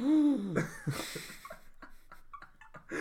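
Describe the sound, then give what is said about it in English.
A loud, wheezy deep breath drawn in, with a voiced, whistling tone at the start, trailing off into softer breathy rustles. “That was a deep breath.”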